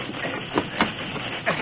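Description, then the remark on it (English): A freight train backs up slowly along the rails with a steady mechanical roar, broken by a few sharp metallic clanks as the cars shift and knock together. “Stop and back up, Bill. We got to get it.”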